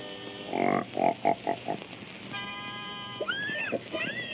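Mickey's singing pigs, Mr. and Mrs. Patty Pig, oink and grunt in a quick run of short, loud bursts as he gets them in pitch, then a steady pitched tone sounds before more drawn-out, squealing oinks rise and fall.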